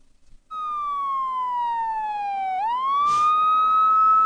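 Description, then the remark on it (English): A loud siren sound effect wails by itself, its steady tone sliding slowly down in pitch and then sweeping back up, with a brief noisy burst partway through the rise. “And I gotta hit the siren on myself. So if you have a siren, blow it now.”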